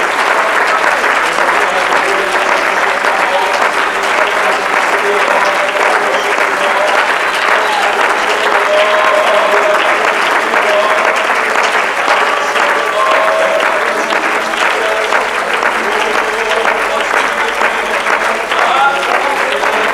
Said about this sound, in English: Put your Bibles down and let's clap our hands to the Lord and just exalt Him right now.